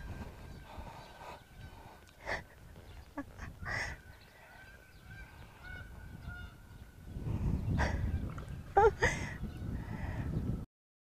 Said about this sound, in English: So we had some geese. I don't know if you could hear their honking, but they terrified the horse who was in the pasture on the side of the arena